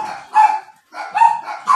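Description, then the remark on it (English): A dog acting crazy barks several times in quick succession, sharp, with a brief pause midway before a few more barks follow. “It's my dog's acting crazy.”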